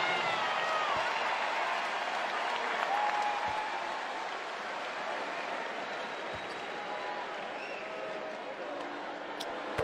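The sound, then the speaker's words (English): A large basketball arena crowd gives an ovation as Pascal Siakam leaves the game with Atlanta trailing 124-95, applauding and cheering in a steady, dense wash of clapping that holds at an even loudness for the whole stretch, with a few faint squeaks and thuds underneath. “Front court, Atlanta trailing 124-95, and Kaminsky is fouled by Champagne, so Hernan Gomez can get in the game, and Siakam will leave to an ovation.”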